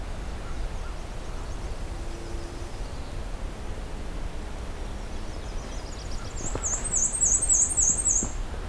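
A black-and-white warbler sings a thin, high, squeaky series of repeated two-part notes near the end, with a fainter run earlier, over steady outdoor background hiss.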